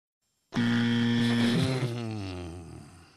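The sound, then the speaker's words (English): A loud, harsh buzzer blares once after a brief silence, a steady rasping tone lasting close to three seconds before it gradually fades. No one speaks over it. “I feel like the buzzer makes me laugh more than these jokes.”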